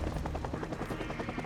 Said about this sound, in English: So we go forward, and there's a helicopter taking off. That's what the story wants us to focus on.